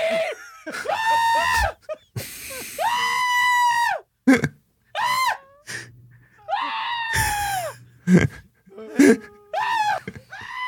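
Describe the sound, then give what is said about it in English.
A person screams in loud, strained, bleating bursts that mimic a goat, about half a dozen wavering yells separated by brief pauses, harsh. “you're screaming exactly like that famous YouTube video goat”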